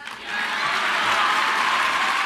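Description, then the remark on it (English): Sustained audience applause for the words liberty, freedom and the pursuit of happiness, a dense wash of clapping that swells quickly in the first half-second and then holds steady and loud, with no voices standing out. “Now, those of you watching at home may wonder why this is being applauded.”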